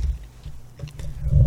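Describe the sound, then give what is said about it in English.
A horse named Nilly bumps against the microphone, making heavy low rumbling and muffled thumps, a few soft knocks in the middle, then a louder boomy rustle building toward the end. No one speaks. “Wow, Nilly is bumping into me and my microphone. That's too bad, because that made that sound.”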